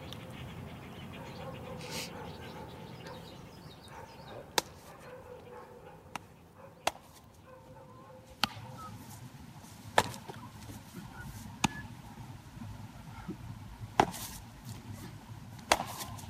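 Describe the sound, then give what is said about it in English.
A baseball smacks into a glove again and again, about eight sharp, crisp pops at uneven intervals over a steady low background hum, with no talking. “every day for hours, that was the sound of summer, was like the sound of a ball getting into a glove.”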